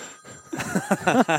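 A mobile phone rings with a short melodic ringtone, a quick run of bright electronic tones that rise and fall, clear with no talking over it.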